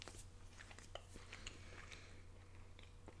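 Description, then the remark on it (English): Wet chewing of a small bite of a chocolate peanut candy, with soft crunchy clicks and mouth noises, irregular bites over a steady low hum, fairly quiet and with no talking. “It's a lot to chew on. And I got a somewhat small bite.”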